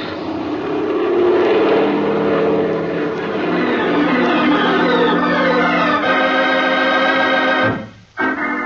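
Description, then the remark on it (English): A loud airplane engine roars steadily and revs higher as the plane climbs back into the sky toward the San Mateo airport without its wheels touching the ground, its droning pitch climbing as it powers up, before the sound briefly drops away near the end. No one speaks. “Without the wheels touching the ground, we were climbing into the sky again and back toward the San Mateo airport.”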